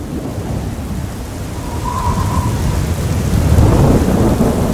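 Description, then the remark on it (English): A tempest striking the Isle of Sand: a thunderstorm with a steady roar of heavy rain over deep, rolling thunder that swells louder toward the end, with a brief thin whistle of wind partway through. No voices. “We do not know the strength of the first tempest to strike the Isle of Sand while they were there, nor how long it had been since the French left when it did.”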